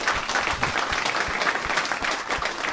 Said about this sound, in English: Big round of applause for my buddy and our buddy, Joe Bartnick, ladies and gentlemen. Let him hear it.